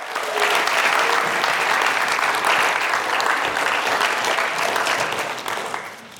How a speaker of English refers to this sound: Can we have a big round of applause for our volunteers?